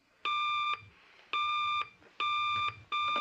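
A telephone rings with a bright, electronic trill in four evenly spaced bursts, each about half a second long, clear, with no voices over it.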